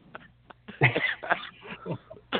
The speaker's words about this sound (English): Sorry. I laugh and cough at the same damn time. I hate when that happens.